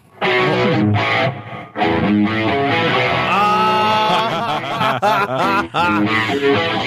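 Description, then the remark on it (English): A loud, distorted electric guitar plays a rock riff with chugging low chords and bending, sustained high notes, driving along steadily for several seconds with no talking. “is just rocking out one of my favorite riffs of any song in history.”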